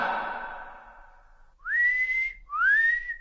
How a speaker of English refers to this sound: whistles loudly.